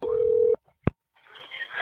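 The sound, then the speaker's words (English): A steady telephone line tone hums for about half a second at the start of a 911 emergency call, cuts off, then a sharp click follows before a faint, noisy connection hiss rises as the call begins. “So here's the second phone call.”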